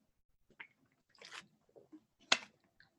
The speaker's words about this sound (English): And another voice crack, so let me get a sip of water to recover.